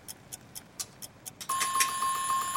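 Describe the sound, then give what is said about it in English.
A timer goes off: several quick, evenly spaced ticks, then a sustained, bright electronic ringing tone that continues steadily to the end, loud with no voices. “And that's our timer.”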